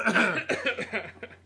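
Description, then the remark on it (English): A fairly loud cough of a few quick voiced bursts, rough at the start and trailing off into softer throaty sounds over about a second and a half. “But then we cough.”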